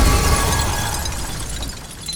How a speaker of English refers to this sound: Midi leans towards the other Midi as if to hongi her, then smashes her head backwards, shattering the glass of the photo. The other Midi shatters into tiny pieces.